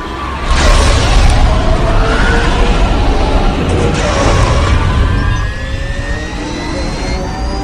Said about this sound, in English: Oh, this is so cool, a pod race. Is this seat taken? Can I sit here? All right, thank you. Ooh, the engines are starting up.